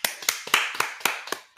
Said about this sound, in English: But everyone, please give a warm round of applause in your own house or home or wherever you are for former President Barack Obama.